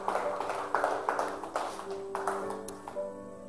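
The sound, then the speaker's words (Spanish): A church audience claps together in applause to Christ after a prayer, a steady, dense patter of many hands with some louder claps standing out, while a held musical tone sounds softly underneath. “Le damos un aplauso a Cristo, hermanos.”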